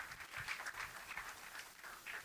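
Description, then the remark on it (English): Steady crowd applause, a dense wash of many hands clapping together without pause for a couple of seconds, fairly quiet. “Give it up for yourself.”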